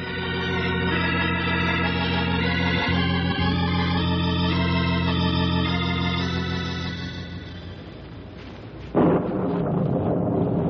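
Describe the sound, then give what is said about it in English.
Thunderstorm with deep, continuous rolling thunder, rumbling loudly for several seconds before a sudden sharp crack near the end. A sustained tonal drone sits underneath, and no one speaks. “That storm isn't going to wait too long to rain on us.”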